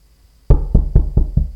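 After a short pause, someone outside a house knocks on the door about six times, firm knocks in a steady, quick rhythm. Each is fairly loud, with a dull wooden thud.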